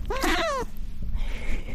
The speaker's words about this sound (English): The old meow. The 19-year-old meow.